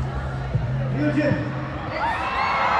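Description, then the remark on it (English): A crowd of fans at KCON, a K-pop convention, screams and chatters in a dense, continuous roar of overlapping voices, with high rising shrieks swelling toward the end over a low steady hum. “I want to go where the screaming people are.”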